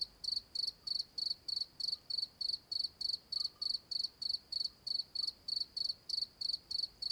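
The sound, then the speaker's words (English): Crickets chirp at night in the Alentejo cork forest, Portugal, at 1 a.m., in a steady, rapid pulsing rhythm, each high-pitched trill repeating about three times a second over a quiet background, with no voices. “Alentejo Cork Forest, Portugal, 1 a.m.”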